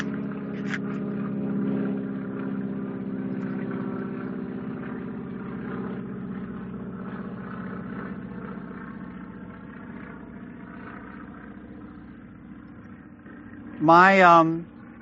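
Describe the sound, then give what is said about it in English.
A low, steady airplane engine drone hums overhead throughout, holding a constant moderate loudness, with a brief sharp rising chirp near the very end. “Let me wait for the plane to pass by.”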